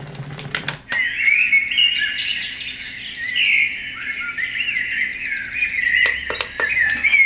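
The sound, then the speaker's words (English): Continuous chirping and warbling birdsong from a sound machine plays steadily at moderate volume, with a few sharp clicks near the start and end and no talking. “All right, so let's try the birds.”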